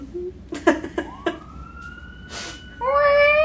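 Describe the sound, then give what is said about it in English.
A police car siren wails past, starting as a steady high tone that swells into a louder, richer wail near the end, with a few sharp knocks at the start. “Oh, there's the cop. Yeah. Oh, look at him go.”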